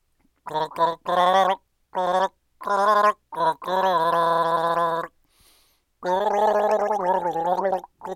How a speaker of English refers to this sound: I've poured you a glass of water here. Okay. And basically, I'm going to gargle the tune to one of your Desert Island disc tunes.